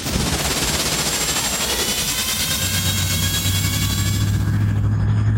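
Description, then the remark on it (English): Luke's vehicle engine on Tatooine, which he worked on all day the day before, sputters to life with a rapid, rattling stutter, then settles into a steady, loud running drone with a deep, constant low hum underneath. No one speaks. “Sounds smooth, Luke. Yeah, I worked on her all day yesterday.”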